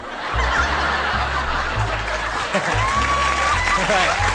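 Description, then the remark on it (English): An audience claps and laughs during an applause break in a Mitch Hedberg stand-up comedy recording, in a steady, dense wash of sound that holds at an even loudness for about four seconds, with no clear words spoken over it. “My mom loves those applause breaks.”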